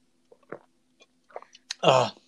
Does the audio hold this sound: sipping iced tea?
yes